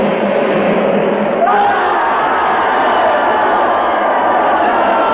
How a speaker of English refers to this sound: They're shouting and yelling enough that they're going.